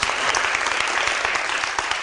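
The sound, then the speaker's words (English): Steady, dense applause from an audience, many hands clapping at once in a loud, continuous wash of crackling claps that holds for the full couple of seconds with no voices. “Everybody, please give Bob Isherwood a round of applause.”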